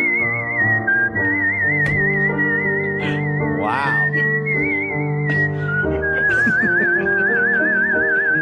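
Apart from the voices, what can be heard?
human whistling a tune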